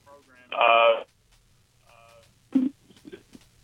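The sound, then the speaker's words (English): A phone connection breaking up: a loud burst of thin, tinny line audio, a gap of near silence, then faint, choppy fragments that cut in and out. “I believe his phone faded, or maybe it's coming back.”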